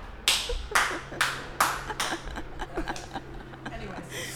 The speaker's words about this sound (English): Sorry, I just had to clap for that one.